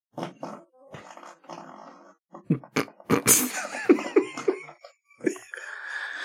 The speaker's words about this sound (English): See what I'm talking about? You have those really long farts. That's because I was drinking last night.